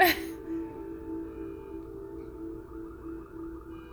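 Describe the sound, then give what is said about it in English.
A car alarm wails on and on, a steady droning electronic tone that holds without a break after a brief sharp noise at the very start; the same car's alarm goes off at the same time every day. “Same car, same alarm, same time.”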